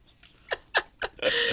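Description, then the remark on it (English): A dog huffs and puffs, three short breathy bursts in a row followed by a longer, louder exhale that keeps going. “So mostly just, she'll probably be huffing and puffing.”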